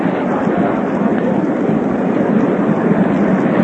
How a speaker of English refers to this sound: The applause there is for the catch by the spectator.